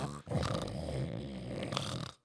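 A single long, loud snore rattles for about two seconds, a rough throaty rumble with no talking over it.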